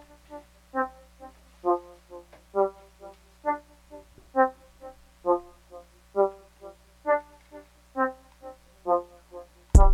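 A hip hop beat plays without vocals: short brassy synth stabs repeat in a steady, punchy rhythm over a sustained low bass drone, ending in a sudden loud burst.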